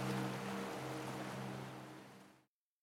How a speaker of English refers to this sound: You're listening to ….